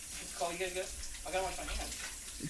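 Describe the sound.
A kitchen tap runs steadily with a continuous hissing splash, while muffled voices briefly talk over it in two short bursts.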